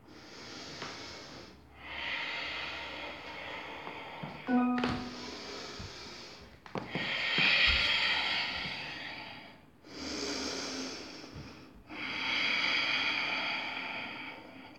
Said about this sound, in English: Take a big breath in through your nose. Let it out through your mouth.